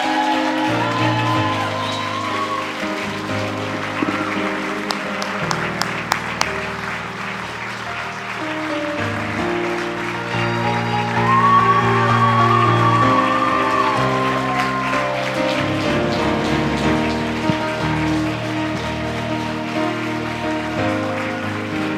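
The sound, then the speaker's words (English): A crowd claps steadily and continuously for over twenty seconds for a BQE team that has won trophies, a dense, even patter with some music playing underneath. “They have just worked so hard, and I just want you to, one more time, give them just a huge round of applause.”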